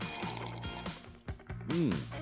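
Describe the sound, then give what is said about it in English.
Someone sips blood orange kombucha, handcrafted in Vermont, from a cup: a couple of seconds of soft slurping and liquid sloshing, ending in a short, rising-and-falling voiced hum. “I'm sipping on one right now.”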